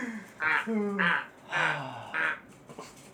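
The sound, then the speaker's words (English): A person makes four loud, nasal, duck-like quacks with their voice, each a short rasping squawk spaced about half a second apart, followed by quiet. “I was like, what is he doing, like, duck noises?”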